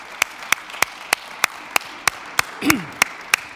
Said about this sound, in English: we all need to give ourselves a big round of applause. And thanks to everybody. Wow, thank you all.